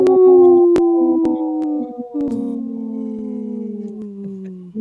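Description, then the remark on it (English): A single long, loud wolf-like howl, apparently a human voice imitating it, holds a steady tone for several seconds and slowly slides lower in pitch as it fades. “Howling for Wolves, protecting wolves for future generations. Howl!”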